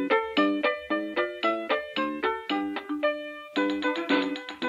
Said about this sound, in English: Well, to the strain of jingle bells in the background, it's time to get off the couch and get on with the training.